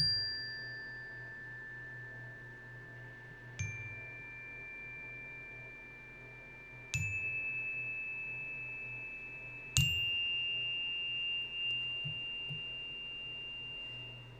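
A meditation chime is struck three times at slow, even intervals, each strike ringing out in several sustained tones that shimmer and slowly fade, heard alone with no talking.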